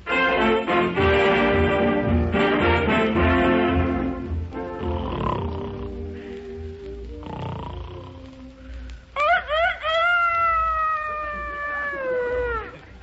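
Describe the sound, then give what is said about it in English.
A Rhode Island Red rooster, used as an alarm clock at Buck Benny's home at 6 o'clock in the morning, crows once, loud, a long rising-then-falling call near the end, following a stretch of music that fades out before it. “Doggone it, I had that rooster set for 9.”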